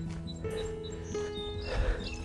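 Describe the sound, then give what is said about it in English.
Birds calling outdoors in spring: scattered short, high chirps and whistles, fairly faint, over a steady low hum and rumbling background, with no talking. “You can hear more birds around now.”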